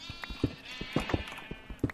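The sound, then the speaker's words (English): Farm animal calls, a drawn-out, bleating cry that carries through the whole moment, with short knocking and shuffling sounds pulsing underneath. No one is talking. “I'm sorry, I keep yelling at the animals.”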